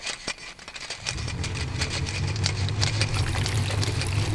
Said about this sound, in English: So you see, from the water injection into the tray, to the Faraday channels for the electricity, to the waste removal and intravenous fluids, the entire system is automated and controlled via this clockwork control panel.